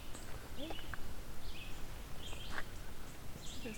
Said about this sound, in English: But there was a bird up on the left here that was guaranteed pine warbler. There, that one.